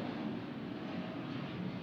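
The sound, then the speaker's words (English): An airplane flies overhead, about to land. A steady low roar and rumble holds evenly throughout, fairly faint, with no voices. “That sounds like it is about to land.”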